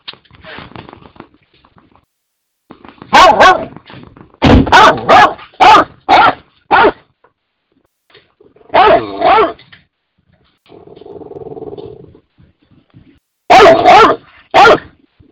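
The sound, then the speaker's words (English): Dogs bark loudly in short, sharp bursts, several in quick succession, with pauses between volleys and a low, sustained growl rumbling in one of the gaps. “Oh, Lord, please put the dogs away, please.”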